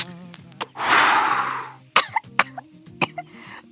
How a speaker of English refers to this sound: Isn't that cute? She's coughing.